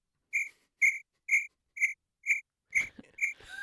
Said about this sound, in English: I'll throw some cricket noises.